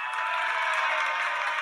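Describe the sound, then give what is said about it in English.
A round of applause played from a soundboard app: a dense, steady wash of many hands clapping at once, sustained at an even level throughout with no voices over it. “I heard the whole round of applause that time, so that was awesome.”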